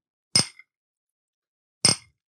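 Two sharp, bright clinks of Bloody Mary glasses touched together on their Old Bay-rimmed side in a toast, about a second and a half apart, each ringing briefly before fading, with silence in between.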